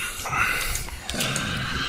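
Heavy, raspy breathing, a long noisy breath followed by another after a brief catch, with a snorting, hissy texture and no other talk.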